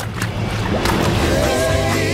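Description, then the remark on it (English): Water splashes onto a person and churns in a loud, continuous rush for about two seconds, with a couple of sharper bursts of spray early on and a low rumble underneath. “Did you just splash me?”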